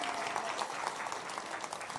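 Steady applause from an audience, a dense wash of many hands clapping at a fairly even level throughout, with no voices standing out.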